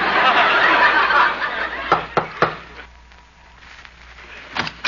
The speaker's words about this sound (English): I'll knock on the door.